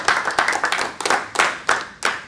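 An audience applauds, many hands clapping in a dense, steady patter with louder accents recurring about every half second. Bright and fairly loud, with no voices over it.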